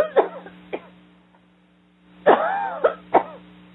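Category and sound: human body sound, people coughing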